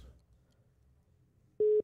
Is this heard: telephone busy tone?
yes